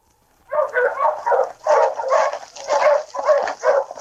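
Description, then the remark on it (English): A pack of sled dogs barks and yips in rapid, overlapping bursts, a continuous excited chorus that grows steadily louder and closer, with no people talking. “Luke could hear the approaching dog team of his pursuer”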